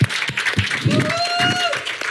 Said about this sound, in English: Yeah, and for good Powerade, can we just give them a round of applause for the amazing work they've done?